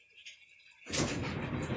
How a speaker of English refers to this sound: Boy, my washing machine's loud.